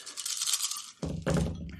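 dice being rolled

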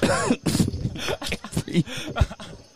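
coughing and throat clearing

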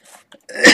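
cough

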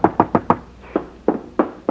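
knocking on a door

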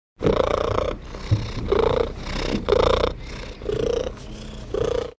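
cat purring

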